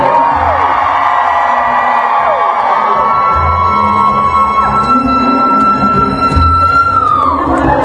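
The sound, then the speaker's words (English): A large audience of women screams together on the count of three, a loud, sustained, high-pitched roar of many voices lasting several seconds with overlapping whoops and shrieks. “Ladies, I want you to wet your lips. On the count of three, I want you to scream.”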